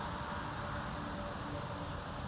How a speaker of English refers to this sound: So, know if you hear those cicadas still out and about.